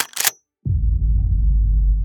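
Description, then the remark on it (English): A shotgun being racked: a quick pair of sharp metallic clacks, then a brief silence followed by a steady, loud low rumble that continues to the end. “I knelt to plug the refrigerator back in when I suddenly heard the sound of a shotgun being racked.”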